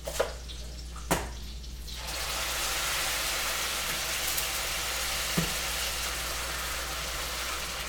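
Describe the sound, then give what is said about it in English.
A couple of brief clinks, then tomato sauce is poured right on top of meat, bringing on a steady wet hiss and sizzle that continues to the end. No one speaks. “And then I'm gonna pour it right on top of the meat.”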